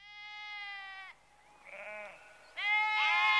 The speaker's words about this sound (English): It's a sheep, yes. It's a particular type of sheep. Can you guess? I don't know many kinds of sheep. Is it a black sheep? It is, in fact, a Scottish sheep.